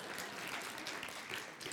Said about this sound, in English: Thank you. Lots of wise parents that are applauding right now.